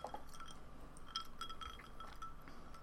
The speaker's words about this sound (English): Okay. Let's do a cheers.